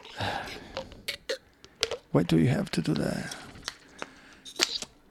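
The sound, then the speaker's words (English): Someone sips ice water: a series of sharp, bright clinks and clicks from ice knocking in a glass, mixed with a brief slurp, while a person speaks in between. “I think at this point, I'm going to take a sip of my ice water, which I will do very carefully.”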